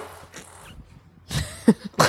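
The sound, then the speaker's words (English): A brief, low, buzzy fart from a person's bare butt squeezes out into a room between two rough, breathy bursts of noise after a quiet start, with no talking. “And fart in, like, into the room with your bare God, ass.”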